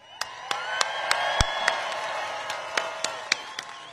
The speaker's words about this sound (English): The comment brought cheers from the crowd